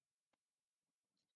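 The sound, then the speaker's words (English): A few quiet, sharp clicks and a brief light clatter as dice are rolled, tumbling and settling, with short gaps of near silence between them and no voices. “After just a tremendously strange spread of dice.”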